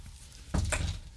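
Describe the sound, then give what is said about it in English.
The bottom drawer where the baking supplies are kept is pulled open while someone looks for baking powder, a sudden wooden clunk followed by a second rattling knock and a low rumble, with no one speaking. “There's, it should be, the bottom drawer where all the baking stuff is.”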